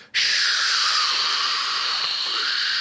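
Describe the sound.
A voice makes a long, steady hissing sound imitating a white noise app as a joke, starting abruptly and holding at an even loudness for nearly three seconds, bright and breathy with no words.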